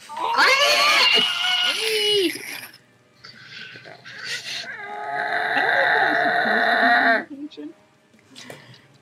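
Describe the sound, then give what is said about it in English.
A voice imitates a ghoul's strained, humanlike screech of pain in two drawn-out, wavering bursts, loud, with a short gap between and a few fainter sounds trailing off afterward. “You sink an arrow into this ghoul, and it yells out in pain, letting out this, like, strained humanoid screech, which I'm not going to do because my family is home.”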